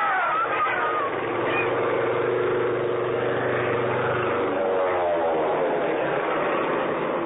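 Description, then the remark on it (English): A loud, droning propeller plane roars past low overhead, making a run down Main Street and dropping leaflets, its engine hum holding steady and then shifting in pitch as it passes and recedes. “The plane was low, making a run right down Main Street.”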